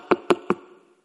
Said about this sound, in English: And Jesus went to stay in the room, and the next day, Satan came in the morning, knock on the door.